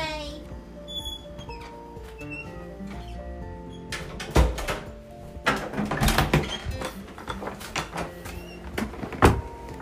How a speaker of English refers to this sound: Sorry for the little intermission of all the door creaks and the door slams.